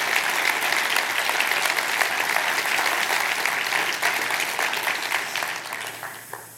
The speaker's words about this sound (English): Can we all give him a round of applause and welcome?